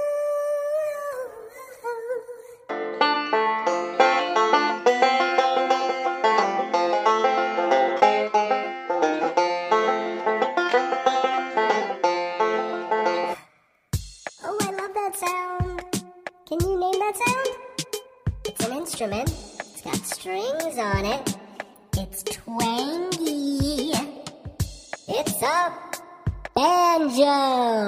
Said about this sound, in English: The sound a banjo makes. That's one of the sounds a banjo makes. A banjo can make all kinds of fun sounds.